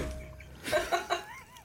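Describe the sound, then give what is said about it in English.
Crunchy chewing of blueberry cereal right up against the microphone, a few loud bites in quick succession over a quiet background. “Get that chewing in on the mic. We need the full-on cereal effect.”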